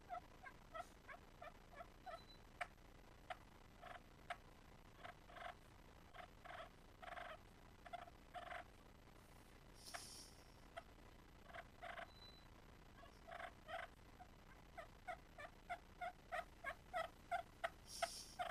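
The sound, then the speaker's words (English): A clucking purr turkey pot call with a longer striker, played fairly soft, gives runs of sharp clucks and rolling purrs in irregular bursts and pauses, imitating a hen turkey. No one talks over it. “But this thing right here, it's not made for anything but clucking, purr, and soft call.”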